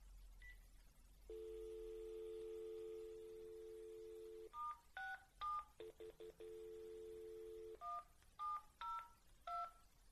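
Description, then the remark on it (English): A steady dial tone hums, then a quick run of touch-tone keypad beeps as a number is punched in for an outgoing call from a blocked phone number, pausing for another stretch of dial tone before more beeps follow, clear with no talking. “Part of the problem is that I'm blocking my phone number and then they get an unknown.”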